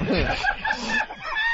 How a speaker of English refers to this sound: Shut the bird up, bird.